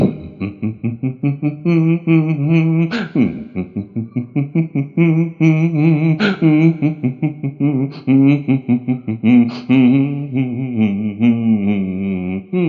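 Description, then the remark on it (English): A man hums a steady, low-pitched tune into a microphone for several seconds, the notes pulsing in quick rhythmic bursts with a buzzy, slightly processed tone and no words. “He was on microphone there. He offered to hum.”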